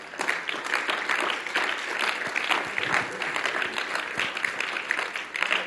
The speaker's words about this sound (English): Let's give the Lord one more hand clap.